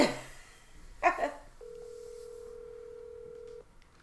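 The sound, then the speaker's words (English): A phone line gives a single ringback tone as a call is placed to a man's phone number, a steady two-second hum after a couple of brief noisy bursts, then goes quiet without anyone answering. “You hear this shit ringing. My phone isn't ringing.”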